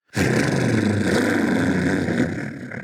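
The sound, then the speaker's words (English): A cat purrs loudly in one deep, steady, engine-like rumble that starts abruptly and holds for nearly three seconds, easing slightly at the end. No one speaks. “That's one hell of a purr you got on you.”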